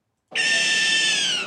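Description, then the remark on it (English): A barn owl gives a single harsh, drawn-out screech, loud and raspy with a steady high pitch, holding for over a second before fading slightly at the end. No one speaks. “That is the barn owl.”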